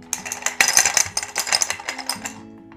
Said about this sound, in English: The sound of breaking glass and dishes is not a good one, right?